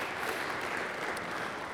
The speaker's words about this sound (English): Now. You can clap. I like it. It makes me feel good about myself. I'm fine with it.